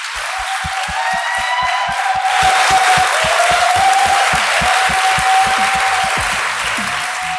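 A crowd claps steadily and loudly for several seconds, with cheers and high whistles rising over the dense applause, and no one speaking.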